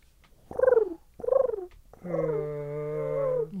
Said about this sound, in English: Those Thanksgiving werewolves. That was a werewolf? It sounded like Donald Duck drowning.